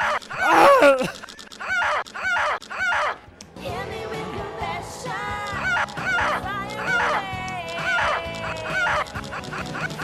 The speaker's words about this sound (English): Yeah, these are the sounds of him kissing.